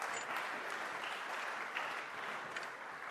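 A crowd claps steadily, a dense wash of many hands applauding at even volume throughout, moderately distant as if filling a hall.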